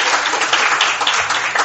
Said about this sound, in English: Let's give them a round of applause for the faithful ones that are here. Amen.